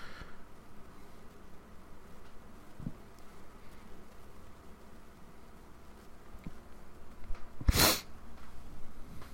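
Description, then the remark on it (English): A single sharp, close sniffle cuts through a low, steady buzzing background, with no one speaking. “I'm not crying, if you're wondering. I'm just sniffling.”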